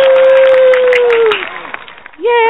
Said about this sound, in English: How is everybody tonight? We're going to get a bunch of applause here. Woo!